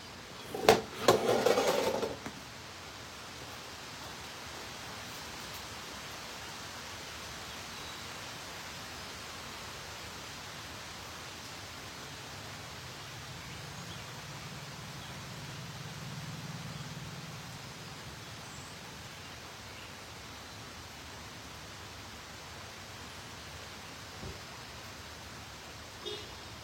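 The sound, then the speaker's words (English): Steady rain hisses outdoors in a continuous, even wash of sound, opening with a brief louder rustling burst and a faint low rumble swelling briefly midway. “It started raining.”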